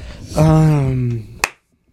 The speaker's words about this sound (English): The loudest clap.